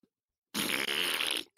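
A single loud, wet, sputtering fart lasting about a second, close and clear with a buzzy, bubbly texture, ending abruptly with no talking around it.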